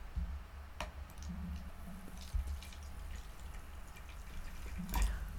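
A fizzy drink is poured, with a soft crackle of bubbles and scattered clicks and drips over a low background hum. A couple of sharper pops stand out. No one speaks.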